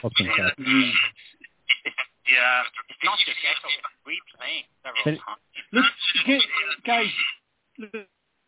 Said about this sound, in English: You can hear the feedback as well, right? I can, Neil. It's not just echo. It's replaying several times.